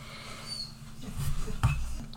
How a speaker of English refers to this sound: My dog is crying, and I don't know why. He probably wants to go run in the lake behind my house.